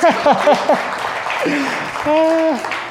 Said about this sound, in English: Oh, round of applause.